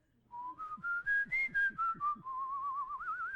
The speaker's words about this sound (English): And we're just going to give it a good old whistle opportunity. So we need to warm up a little bit.